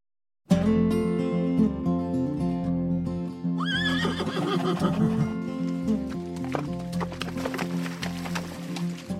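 A horse lets out a loud, shaky whinny a few seconds in, rising over a steady, sustained musical backdrop that plays throughout, with no talking.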